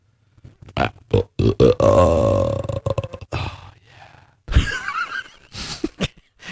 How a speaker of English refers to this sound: That was the best freaking burp. Let me hear that burp again.